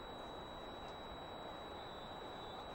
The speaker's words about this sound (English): Sorry, having some interference here, trying to figure out what it is for you.